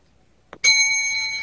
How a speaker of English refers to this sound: When I ring the bell, you may attack, pillage.